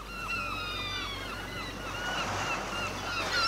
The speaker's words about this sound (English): Oi, seagull, get away from my sandwiches.